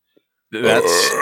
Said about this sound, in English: Don't ever burp in my face like that again, or I will punch you right in the mouth.